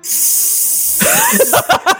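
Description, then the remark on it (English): A person imitates a snake, making a long, steady hissing sound for about a second, then breaks into rising vocal squeaks and short breathy bursts. “We've come to the conclusion that those dots are Morse code and that it's a snake going...”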